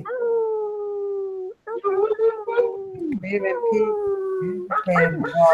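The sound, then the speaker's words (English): People on a live online broadcast, unmuting their microphones, howl like wolves in long, drawn-out wails, one sustained howl, a brief gap, then several voices overlapping with rising and falling pitches, loud. “So just make some noise, send some love, guys. Like, let's get owls in there.”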